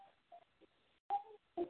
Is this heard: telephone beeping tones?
yes